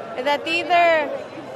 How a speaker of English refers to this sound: mostly non-Egyptian women turned out, and they were quickly surrounded by crowds of curious men. I mean, we're being surrounded by other men, and I don't feel comfortable.